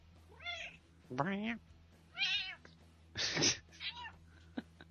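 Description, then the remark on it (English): A female cat meows several times in quick succession, a run of short, rising-and-falling chirpy calls with one rougher, breathier cry, over a low steady hum. “The cat's so talkative.”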